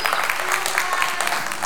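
An audience claps their hands together, a dense, steady patter of many hands that stays at an even, fairly loud level throughout the short burst.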